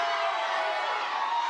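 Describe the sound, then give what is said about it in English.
An audience shouting together in a loud, sustained roar of many voices, a dense wall of cheering and whooping that holds steady without pause for over a second. “But after 13, God says to you, shout, because I'm getting ready to knock the walls down.”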